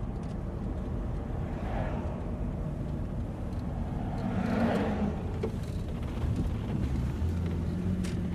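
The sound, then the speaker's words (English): A car engine hums steadily while driving in the evening, a constant low rumble with road noise and a couple of swelling whooshes, as if passing traffic or wind, fairly loud with no one speaking. “Now, I'll have to ask you to get down on the floor of the car.”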